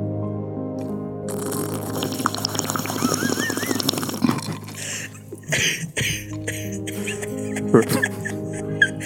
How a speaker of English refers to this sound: Now listen to the water as I stick my fingers in and give it a taste.